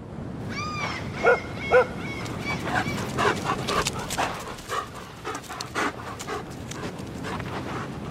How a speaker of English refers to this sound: If you said that I'm walking my dog near the ocean, you're right. Yep, Luna and I love walking on the beach. We love the ocean breeze, the sound of the waves, and the feeling of the sand between our toes and paws.